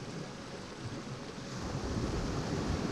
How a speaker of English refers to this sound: You lie down in the hot noonday sun, and it feels warm as a big, soft cat covering you, taking away the chill of the waves. And the swish-swashing sounds lulls you to sleep.